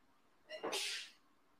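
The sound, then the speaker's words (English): A single sharp sneeze: a brief breathy intake rising into a bright, forceful burst of air that fades out quickly, fairly loud against a quiet background. “sneezing up a storm.”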